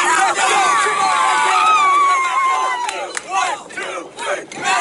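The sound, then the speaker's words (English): A crowd of baseball players, including the Medfield team, yells and cheers together during an extra-innings game, a dense roar of overlapping voices with rising whoops, then breaks into shorter, choppy shouts that swell and fade toward the end. “They were yelling with us.”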